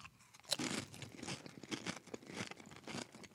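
Loud crunching of Doritos tortilla chips being chewed, a sharp first bite followed by a steady run of irregular crackly crunches, with no one talking.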